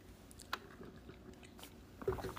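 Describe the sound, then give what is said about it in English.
Someone drinking water: soft, quiet mouth sounds with a couple of faint wet clicks, then a louder gulping swallow near the end. No one speaks. “I had to get some water.”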